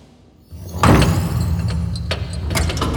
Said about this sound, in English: Elevator arrived. Chamber core. We're here. The doors have opened to a large spherical room. Empty. Walls made of metal.